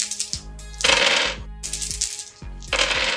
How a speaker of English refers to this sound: I'm going to have to roll more dice after this. Oh, that's not a good sound.